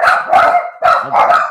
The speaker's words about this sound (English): Dogs.